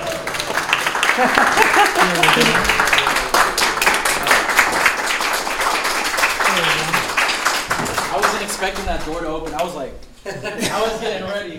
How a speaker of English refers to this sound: Let's give it a big round of applause to Kenz.